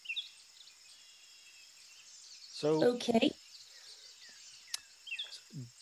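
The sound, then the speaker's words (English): A steady forest ambience of high insect-like buzzing with a creek running in the background and a few scattered bird chirps near the end; a person briefly speaks partway through, and the background stays fairly quiet and constant. “So I can hear birds and natural wildlife. Yeah, it's you hear a creek running in the background.”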